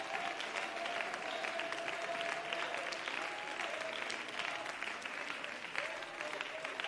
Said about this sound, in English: Come on, one more time. Clap those hands.